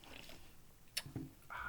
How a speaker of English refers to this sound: I got a Trogs Lolly Hop Double IPA, 8.2%. Never had it before. A little sip-a-roo.